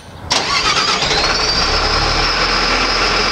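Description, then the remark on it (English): The large diesel engine of a wheel loader, a giant steel bulldozer, cranks and roars to life after a moment of quiet, then settles into a loud, steady rumble with a high whine riding on top. No one speaks. “And now Tom Clemens drives a wheel loader, a giant steel bulldozer.”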